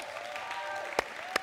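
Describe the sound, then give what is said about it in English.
An audience claps in a steady, dense patter of applause, with two sharper, louder claps standing out near the end of the brief burst. “Do you guys just want to clap?”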